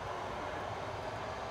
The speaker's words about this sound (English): Ding, ding. Here it comes. So, should I wait? Yeah, here it comes. Okay. So everybody wave. It's the 402 from home. It's train magic.